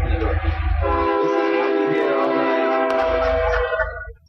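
A loud, sustained horn from a huge passing train blares in a steady harmonic chord for about four seconds over a low rumble of rail cars, heard from a hotel room in Goose Creek, then fades as it passes.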